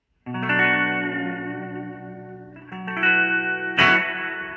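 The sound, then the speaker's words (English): Sustained electric guitar chords washed in echoing Blade delay with pre-delay and lush mood reverb, with a few strums ringing out and blending into long, shimmering tails. No one speaks. “Blade delay is pretty cool. It's got a mood reverb.”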